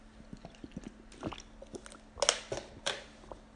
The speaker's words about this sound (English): Oh, excuse me. I had to drink some water, sorry. I had to wet my whistle, as it were.